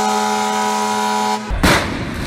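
A protest caravan of cars drives past the mayor's official residence in New York City. A long, loud, steady horn blast is followed by a burst of rushing traffic noise.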